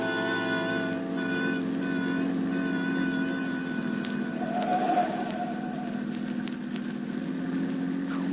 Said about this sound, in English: Who can relax in this mess of traffic? Must be a wreck or something up ahead.